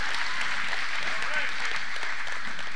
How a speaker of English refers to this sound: Especially, can we give the string quartet a good hand clap of praise, the people who are over there?